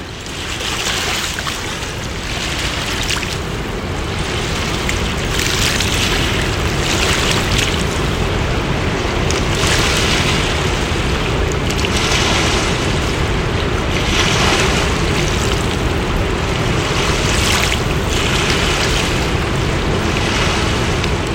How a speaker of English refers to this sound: after crossing the footbridge, we walk up a little ways on the boardwalk, and to the right, there is a bench area. It's not that far along from the starting point. And it's an area where we can take in some of the sounds and the sights of the river.